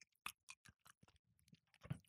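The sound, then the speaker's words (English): Wet chewing of food, a run of irregular crunchy clicks and smacks over about two seconds, quiet overall with no talking. “You're really struggling with that, aren't you? Chew it.”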